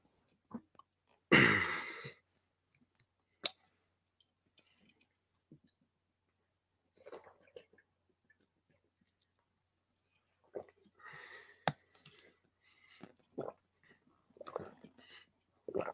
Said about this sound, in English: Hold on, folks, as I take a little sip.